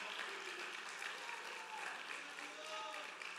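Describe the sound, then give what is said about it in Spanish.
An audience in a church service breaks into sustained, vigorous applause for the Lord, a dense, steady wash of clapping that holds at full strength for the whole stretch, with a few voices calling out faintly beneath it. “Y el que lo crea, denle fuerte aplauso al Señor con todo el corazón.”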